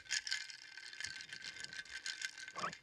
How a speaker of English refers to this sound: So happy Monday morning. Let's take a sip. Beautiful. Listen to that ice clink.